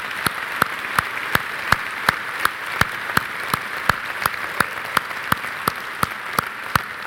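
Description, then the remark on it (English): An audience applauds in a sustained, dense wash of clapping, with one nearby pair of hands cutting through in a steady, evenly spaced beat throughout. “In fact, I'd like us to give a round of applause for those guys who in their heart made that decision today.”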